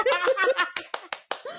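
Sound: hand clapping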